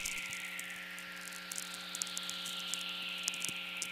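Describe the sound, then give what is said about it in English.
A lightning whistler radio signal, made by a lightning bolt's electromagnetic pulse travelling to the opposite hemisphere and back: a hissing tone slowly sliding downward in pitch over several seconds, set against scattered static crackles and a steady low electrical hum. “And in making this long trip, the frequency components are spread out, so you get this downward falling tone, like a sigh or a hiss.”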